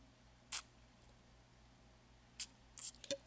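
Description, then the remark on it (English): Someone takes a quiet sip of water: a few soft, wet mouth clicks and a small swallow spread across a few seconds, with no talking. “So with that being said and prefaced and placed upon actual visuals that we have seen this week, let me take a drink of my water.”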